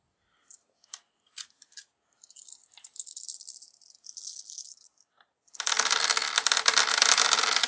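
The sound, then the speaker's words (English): A handful of eleven dice clicking and rattling, first in sparse taps, then a steady shake, before a loud, dense clatter as they spill and tumble, rolled as a gymnastics plus agility pool to dodge. No one speaks. “Okay, so... 11 dice, right?”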